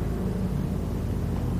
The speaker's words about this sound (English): As I say that, as the truck roars by, this silence, this gift of silence that very gently holds us in itself.